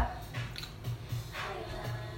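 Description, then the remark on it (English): Liquid is spilled and drips in a few soft, irregular splashes, with a low hum running underneath and no one speaking. “you're spilling it everywhere.”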